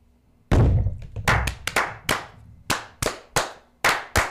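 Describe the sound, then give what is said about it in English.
A group of Freemasons claps the Masonic 'fire' in unison, about ten sharp, loud claps in a brisk, slightly uneven ritual rhythm, each one ringing briefly, with no talking. “Hard to clap when you have a phone in your hand.”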